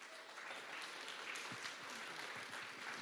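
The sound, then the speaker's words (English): An audience applauds steadily, a dense wash of overlapping hand claps at an even, moderate loudness for the whole stretch, with no voices heard. “So give her a warm round of applause.”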